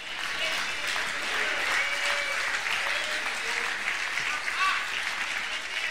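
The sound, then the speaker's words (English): Part of an audience claps in a steady, moderately loud patter of applause that runs unbroken for about six seconds, without swelling or dying away. “Half of y'all clapping, the other half look like you want to punch me in the eyeball right now.”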